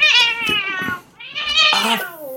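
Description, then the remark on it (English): A pet cat sitting right beside the microphone meows loudly: two long, drawn-out, wavering cries separated by a brief pause, the second rising into a strained, yowling tone. “Sorry, my cat is sitting right by the microphone.”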